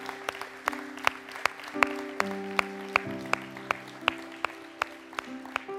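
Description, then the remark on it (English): An audience claps in a steady, even rhythm, sharp claps landing about twice a second over sustained, shifting organ-like chords that fill the room. “Can I just tell you, your Heavenly Father's applauding you, and we applaud you, and we're so blown away.”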